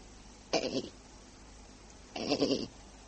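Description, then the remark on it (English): Two short, wavering bleats from an old black goat, about a second and a half apart, against a quiet, faintly hissing background with no talking. “Hey, there. Is that you, goat?”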